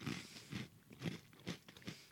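Crunchy cereal with a cookie-confetti look being chewed, with about five loud, brittle crunches falling in a steady rhythm roughly every half second and no talking in between.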